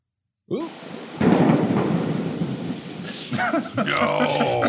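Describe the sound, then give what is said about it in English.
A loud thunderclap sound effect for a lightning strike in a game erupts and rolls into a heavy, rumbling crash, with rain-like hiss and crackling texture, followed by a second surge of thunder near the end. “The lightning strike is back.”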